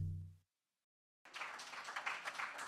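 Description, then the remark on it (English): A low sustained tone fades into a moment of silence, then a standing sermon audience bursts into steady hand clapping, a dense wash of many hands continuing to the end. “Now, we stood and we gave him a hand clap, but that didn't sound like a great hand clap to me.”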